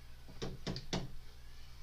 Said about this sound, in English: Just gonna like knock on her leg and.